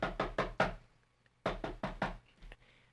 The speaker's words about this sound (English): Okay, let me just knock on the door over there.